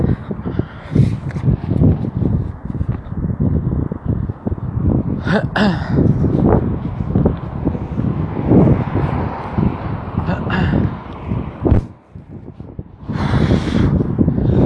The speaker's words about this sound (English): It's kind of windy. It's a little bit cold. Last night it was really windy.